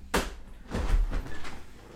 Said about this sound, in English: struggling desperately with the door. I keep turning the key the wrong way. Very bad at it.